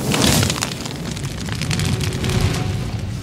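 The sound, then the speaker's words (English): A loud, sudden whoosh of flame erupts and keeps roaring, thick with sharp crackles and pops, as a phoenix, the professor's bird in Harry Potter, bursts into fire; no voices are heard. “Professor, your bird, it has caught fire.”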